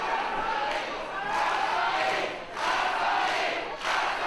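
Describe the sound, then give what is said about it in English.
A large crowd yells encouragement in loud, sustained waves, the roar swelling in repeated surges roughly every second or so with brief dips between, like a rhythmic chant. The crowd appears to be yelling "Gumbare" (roughly "try hard"), cheering for Kansai during a match. “Well, it sounds like they're yelling Gumbare, which is like, try hard or something like that, right?”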